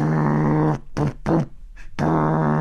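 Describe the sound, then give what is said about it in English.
A voice imitates a loud truck engine pulling up next to a car at a traffic light, with a low, gravelly rumbling growl, broken into several bursts: a long opening rev, two short pulses, then another sustained roar. “Like, if we're sitting at a light and a truck pulls up next to us and you just hear...”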